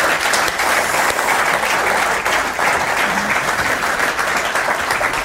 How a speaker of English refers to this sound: Sam's beautiful wife, Elise, is here. So give a warm round of applause for Elise.